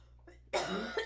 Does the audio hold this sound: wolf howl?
no